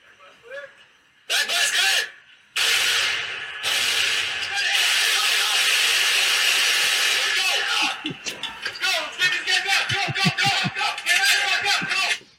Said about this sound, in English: Oh yeah, definitely ear warning. Yeah. If anyone's watching and have earphone right now, they better turn down just a little bit. Here he comes. We got a truck.